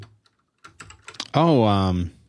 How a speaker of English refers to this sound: You can hear my clicky keyboard because I unplugged that.